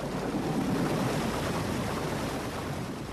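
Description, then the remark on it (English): Water gushes steadily through opened sluices into a canal lock, raising a boat inside, a loud, continuous rushing roar with a churning low rumble that stays even throughout, with no voices. “So we're in the lock, and the gate is closed behind us, and the sluices have opened, and the water is kind of gushing in, which means the boat is rising up in the lock.”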